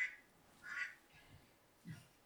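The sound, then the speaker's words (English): A duck quacks three or four times in short, nasal bursts spaced irregularly, heard fairly quietly and alone with no voices. “Do you guys have any idea why there's a duck?”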